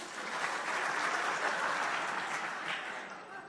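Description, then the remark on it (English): A crowd applauds steadily, many hands clapping in a dense, continuous wash of sound that holds for a few seconds before tapering slightly at the end. “How shame, how dare you to clap on about.”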